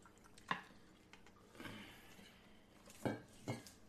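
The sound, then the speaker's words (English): Vodka pours into a glass with a short splashing rush, framed by a few sharp clinks of glass and ice, fairly quiet overall with no one talking. “I should pour your fucking vodka from now on.”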